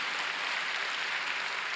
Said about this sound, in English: That we're just, that he just, when we're just, yeah, that's a great place to clap.